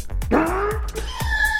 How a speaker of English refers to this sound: Was that a sick bird? I don't know what happened there. I went to do a cough, and then something else happened. Like the devil came out of me.